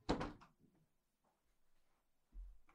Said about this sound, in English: I'm going to close my door because it just opened.